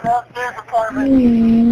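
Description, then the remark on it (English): A burst of garbled, voice-like radio chatter gives way to a steady, low-pitched electronic beep that holds unbroken for about a second to the end. “I can hear the beep of the radio.”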